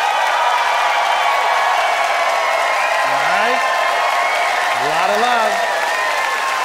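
A Winnipeg audience applauds steadily and loudly throughout, voting by applause on whether the Barbie doll should be discontinued, with a couple of rising whoops and cheers cutting through the clapping partway in.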